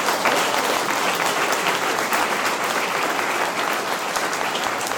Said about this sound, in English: Thank you. What a wonderful job they did. Let's give everyone another round of applause.